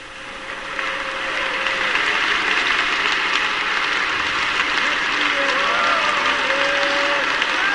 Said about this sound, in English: Go ahead and clap your hands before you're seated and say, we will pray.